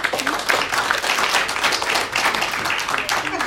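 An audience applauds steadily for a few seconds, a dense wash of many hands clapping at once, fairly loud and sustained without pause.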